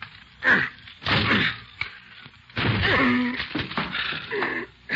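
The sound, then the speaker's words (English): Repeated heavy wooden thuds and crashes as a door is battered with a chair, several loud blows spaced irregularly, with creaking and splintering between hits. “Okay, give me a chair. I'll break this door down for you.”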